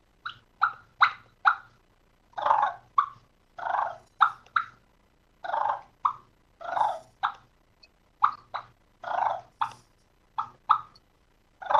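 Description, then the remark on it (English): A turkey call imitates a contented purr and a fighting purr with short bubbly clucks, a steady run of quick chirping bursts and brief pauses, heard clearly with no talking. “And there you have the contented purr and the fighting purr, actually.”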